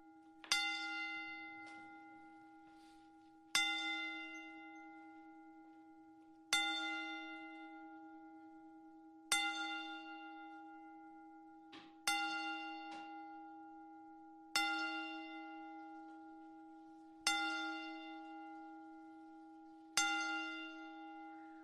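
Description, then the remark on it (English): A single bell tolls slowly in a wrestling ten-bell salute in tribute to wrestler John Huber (Brody Lee, Luke Harper), about eight or nine loud, evenly spaced strikes roughly three seconds apart, each ringing out and fading before the next. No one speaks. “Bell salute, rest in peace, John Huber, a.k.a.”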